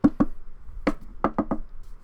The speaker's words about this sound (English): That's us knocking on wood.